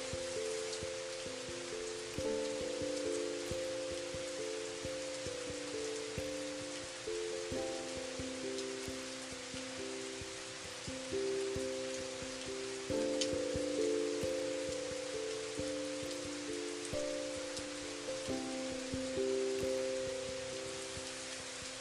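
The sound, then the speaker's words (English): Gentle rain falls steadily on surfaces, a constant soft hiss of pattering drops, with low sustained tones humming quietly beneath it throughout. No one speaks. “So that you are serene and calm and cleansed with that gentle rain washing down.”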